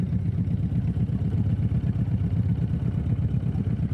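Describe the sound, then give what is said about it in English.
A boat motor runs steadily on a lake, a low, throbbing rumble with a fast regular pulse that never lets up, with no voices over it. “Those are the sounds of boating and of the lake.”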